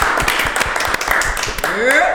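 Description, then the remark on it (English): Several people at 804 RVA clap in a quick, uneven burst of loud, crisp slaps that run throughout, with voices calling out over the applause and a rising whoop near the end. “Clap it up.”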